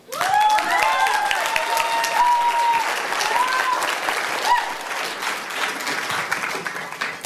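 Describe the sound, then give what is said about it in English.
A large audience applauds a speaker at the end of a talk, steadily for several seconds, a dense wash of clapping with a few cheers or whoops rising above it early on, tapering slightly toward the end. “They're clapping for you.”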